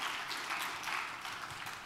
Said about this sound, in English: Give the Lord a good hand clap of praise as you're being seated this morning.